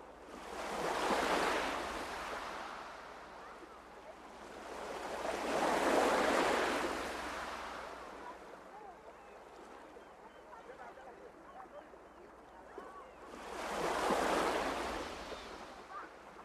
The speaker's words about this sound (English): this is the little soundscape, Sound of the Sea, that you listen to when you're dining on this